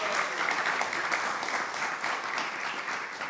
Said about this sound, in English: so let's just give him a big round of applause and thank him for all his association.